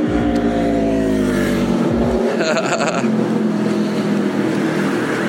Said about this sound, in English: I know, here I am talking about noise and stuff, and I'm sitting here walking with this thing with fucking motorcycles going by.